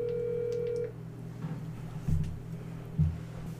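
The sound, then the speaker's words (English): A phone line tone sounds for under a second as a call goes through, then gives way to a low hum of open line noise with a couple of soft thumps. “She looked at the phone and saw it was you and just set it back down.”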